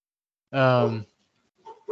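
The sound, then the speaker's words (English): A single drawn-out bark from a stray dog, loud, ringing for about half a second, followed by a faint shorter sound near the end. “Oh, my dogs are going off now because I...”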